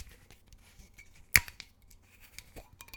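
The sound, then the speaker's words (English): The screw cap of a bottle of Seagram 7 American blended whiskey is twisted open: one sharp, crisp crack as the seal breaks, then a few faint ticks and light scraping in otherwise quiet surroundings, with no talking. “So let's go ahead and open this up.”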